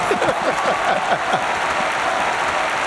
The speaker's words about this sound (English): I love how long that clapping is.